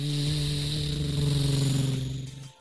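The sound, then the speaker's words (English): A truck engine drones loudly and steadily as the truck drives past in a forest, a low humming rumble that tapers off at the very end as it moves away. “Ava ducked behind one of the pine trees as all of a sudden a truck drove right past her.”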